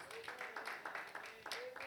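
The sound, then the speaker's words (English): A church audience claps hands in praise to God in a quick, uneven rhythm of soft bursts, fairly faint, with a faint voice or tone lingering underneath. “Give God a hand clap praise.”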